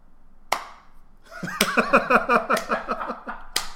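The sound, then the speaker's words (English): Three sharp, sparse claps spaced out slowly, about a second or more apart, with a rhythmic, laughter-like vocal burst filling the gap between the later two: a slow clap emote in a video game, obtained from a loot box and selected and equipped. “Select, equip, slow clap.”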